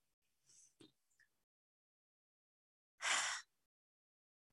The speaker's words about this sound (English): I'm just going to keep breathing. I'm just going to keep breathing.